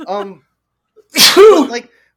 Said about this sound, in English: Oh, are you okay? You're gonna be. Yeah, I'm fine. Okay. Sorry, I had a bad sneeze.